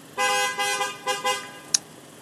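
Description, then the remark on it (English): A car horn honks in traffic in a moment of road rage: one long blast, then a shorter second honk, both bright and blaring, followed by a brief sharp click. No one speaks. “I can tell, like, the person that was beeping has a little fucking fucked up hood.”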